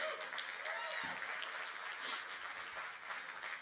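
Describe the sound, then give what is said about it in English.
A crowd applauds steadily, a dense wash of many hands clapping at an even level for several seconds, with a brief swell partway through and no distinct individual claps standing out. “I wanted to share that with you because I knew it would be cheap applause, but go marriage anyway.”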